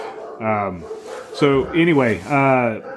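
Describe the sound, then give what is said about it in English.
A female dog vocalizes in three quick bursts of sharp, high-pitched barks that slide into whiny yips, fairly loud, with a faint background hum between them. “So I was hoping that she wouldn't start barking.”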